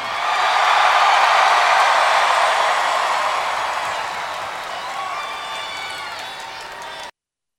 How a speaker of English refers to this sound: The crowd actually chant for Cena, so a rare 2011 pro Cena crowd here in Omaha, Nebraska.